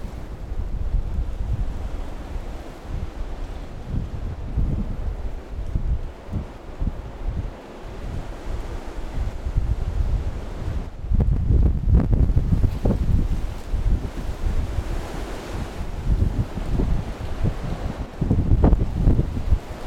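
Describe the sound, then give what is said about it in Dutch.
Strong wind of Storm Eunice roars steadily against the microphone, its windshield held turned away from the wind, with heavy buffeting gusts and low rumbling surges, especially loud bursts toward the middle and end; no voices. “Storm Eunice take 2”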